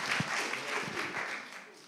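A church audience applauds and cheers for a girl in a steady, dense wash of clapping that holds at an even level throughout, with a few dull low thumps near the start and no clear words.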